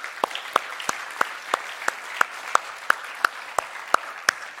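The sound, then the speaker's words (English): A church audience applauds the volunteers of its Awana children's ministry in a steady wash of clapping, with one pair of hands striking sharp, evenly spaced claps about three per second throughout. “And can we just give a round of applause to all of our volunteers who are helping with this?”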